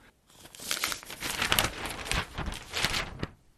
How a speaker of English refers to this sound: Turning the page to the Daily Northern Argus in Rockhampton.